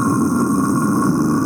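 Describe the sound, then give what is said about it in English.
A single sustained, gravelly growl from a human voice, loud, held steadily for about a second and a half in the style of a heavy metal vocal. “Unfortunately, it was a metal growl.”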